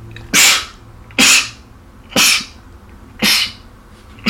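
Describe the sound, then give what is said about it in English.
Four sharp sneezes in a row, evenly spaced about a second apart, each a loud, breathy burst with no talking in between. “I would bless you, but you don't deserve my blessing.”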